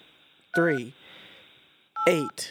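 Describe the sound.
Two short telephone keypad tones, entering digits of a 5 to 8 digit SKU number on a customer care phone line, sound about a second and a half apart, each a steady electronic beep overlapped by a brief burst of voice, with a low hum in between.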